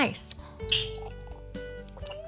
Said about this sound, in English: Nice. Damn it, I was making all those noises. Ah, there we go. There's that wine bottle sound.